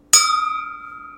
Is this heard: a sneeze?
no